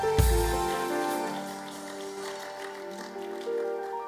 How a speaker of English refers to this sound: Somebody give the Lord a clap offering in the house.